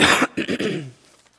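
A single loud cough from a speaker partway through a talk on 2 Timothy: a harsh noisy burst followed by a couple of short rasping throat-clearing pulses that trail off into quiet.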